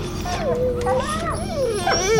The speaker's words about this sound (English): What's happening? The dogs, they're sitting, lying down. You did that? You made them quiet?